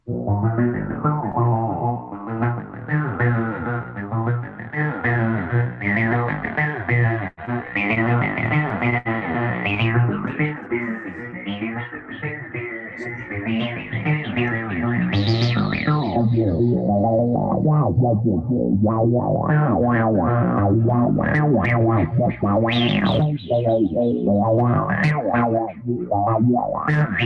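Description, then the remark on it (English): A distorted 303 synth line plays a repeating pattern, its resonant filter sweeping up and down to give each note a squelchy "wow" bark. It runs loud and steady, with no talking. “And it's very basic, but you can hear that wow, wow, wow, that what we call a bark or a wow, that only the 303 really does well.”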